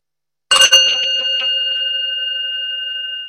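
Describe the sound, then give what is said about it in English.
A meditation bell is struck once, clear, with a bright metallic attack that settles into a long, steady ringing tone with a gentle wavering shimmer as it sustains. “Possibly not, because in a way it depends on how I strike it. So the bell itself, you could think, oh, nice bell, I'm going to have a nice sound.”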